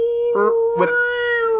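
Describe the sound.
A voice imitates a seal-like whale call, mocking the Icelandic language: one sustained, droning moan, fairly loud, broken by two short warbling surges, with no other sounds around it.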